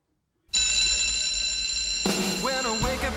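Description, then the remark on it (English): A loud, steady electric bell rings for a couple of seconds, then the bright, upbeat theme tune of the TV sitcom Saved by the Bell bursts in with a sung vocal line over the music. “It's such a catchy song”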